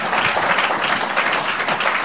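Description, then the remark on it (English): A church audience applauds an elder in a steady, dense wash of clapping, loud and continuous throughout with no pauses and no voices standing out. “A round of applause for the elder.”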